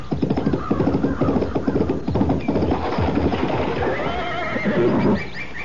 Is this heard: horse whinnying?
yes